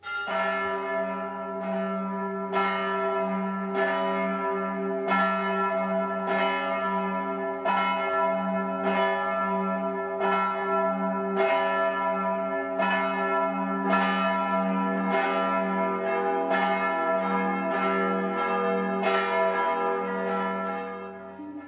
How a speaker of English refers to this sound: Well, I know that during Lent we typically don't hear bells, but that's just liturgically, and this is not a liturgy. So I'm playing that bell bumper right up front is to call us kind of to prayer, to think about what we're about to talk about here.